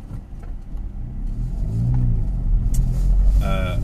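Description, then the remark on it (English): A car drives along the road with a steady engine rumble and tire noise, the engine note rising as it accelerates midway and staying loud to the end. “You'd have thought someone driving a fancy BMW like that would not have given one thought for someone driving the heap that I'm driving, but there you go.”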